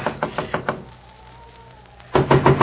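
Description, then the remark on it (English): A quick series of about five firm knocks on a wooden door, someone knocking to wake an old man inside, in snowy weather; a pause with faint background hum, then another rapid burst of four louder knocks. “Open up the door.”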